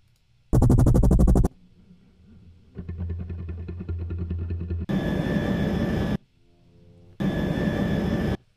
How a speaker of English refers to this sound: I think maybe a helicopter could sound cool too, I don't know. Right here, since there's nothing going on in the beat.